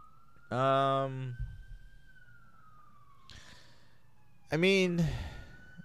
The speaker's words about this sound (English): You guys hear that siren? That's my life.